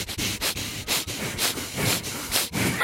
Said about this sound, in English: But listen to my nose. I can't do it like that. I can make my nose flap.